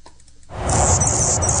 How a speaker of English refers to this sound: And here's an Anna's hummingbird. You can hear what it sounds like. And in the background, you can hear a red-winged blackbird, too.